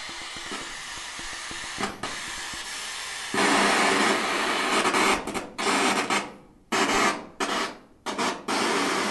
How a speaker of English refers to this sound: Oh, yeah, it's like a white noise machine. Mostly static. They add white noise to this on top of it searching for signal.